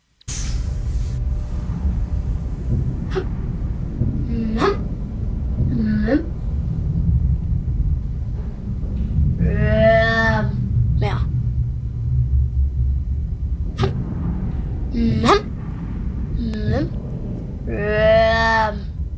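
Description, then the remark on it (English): A steady, low rumbling hum of a crematorium in a film scene drones continuously throughout, while muffled voices of two kids talking in bed and occasional higher tonal cries rise and fade over it. “as we watch the movie, we come to realize this is the hum of the crematorium.”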